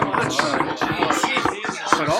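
Several hands knock on wood at once, a busy, uneven clatter of sharp hollow raps that keeps up steadily for about two seconds.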